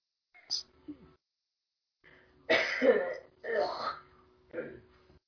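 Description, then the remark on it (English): A short, faint throaty sound, then after a pause three loud, harsh coughs from a woman in quick succession, the first two longest, the last one shorter. “Did they hear you coughing or sneezing”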